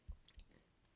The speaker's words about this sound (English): Not me just casually munching on Kit Kat.